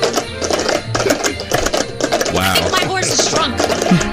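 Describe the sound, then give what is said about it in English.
Radio hosts tap, clap and knock cups on a surface in a quick, steady rhythmic pattern as a holiday tradition, the sharp percussive hits running throughout over a Christmas song with voices. “Us playing the cups.”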